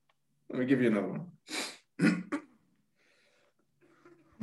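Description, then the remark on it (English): Someone clears their throat to warm up their voice: a drawn-out, gravelly vocal rumble followed by two or three short, harsh bursts, then near silence. “Yeah, clear your throat.”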